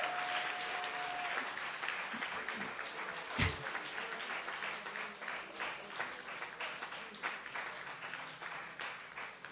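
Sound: audience clapping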